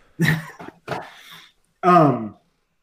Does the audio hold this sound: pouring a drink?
no